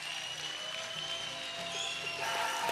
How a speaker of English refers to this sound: I think now we just need to give the Lord the biggest clap offering and praise that we've ever given in this church. I want it loud. Come on, give the Lord a good praise.